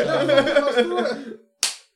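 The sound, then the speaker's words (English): After a stretch of excited, drawn-out voices, a single loud, sharp hand slap from a high five cracks out and quickly fades. “The world's loudest clap.”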